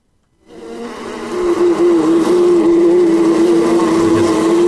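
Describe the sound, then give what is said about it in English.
A dense, steady drone of some 80,000 bees in an 8-foot beehive inside a house wall rises quickly after a brief silence, then holds loud with a constant humming pitch. No one speaks. “So there was something like 80,000 bees in their wall.”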